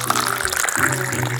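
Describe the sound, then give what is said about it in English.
Water pours steadily for a moment, a continuous splashing gurgle with a rising tone as a vessel fills, heard on its own without talk. “Do you want water?”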